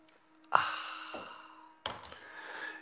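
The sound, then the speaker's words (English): A drink is sipped with a soft slurp during the 'Simultaneous Sip', then a breathy, satisfied exhale follows after a brief pause. No one speaks, and the sounds are moderately loud. “Now, if you'd like to join me for the unparalleled pleasure, the dopamine of the day, the thing that makes everything better except Dominion Software, it's called the Simultaneous Sip. And here it comes. Go.”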